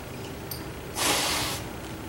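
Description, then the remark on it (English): A single sneeze: one breathy, hissing burst of about half a second, fairly loud against a quiet background, with no talking around it. “I'm going to sneeze here in just a moment.”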